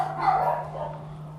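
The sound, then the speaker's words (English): Muffled dogs barking from upstairs in the house, with a steady low electrical hum running underneath. “Or there are the dogs, by the way. They're going to be joining us for this recording as well from upstairs.”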